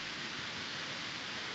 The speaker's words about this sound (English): Is it raining already in Ocean City?